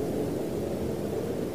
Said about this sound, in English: It doesn't allow the sound of the jet plane to be just itself.